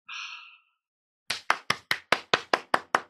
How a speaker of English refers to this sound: I'm just going to applaud.